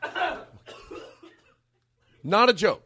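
A man coughs close by: a few rough, throaty bursts, then a short pause before a louder, harsher pair of hacking coughs.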